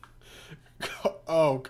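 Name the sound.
coughing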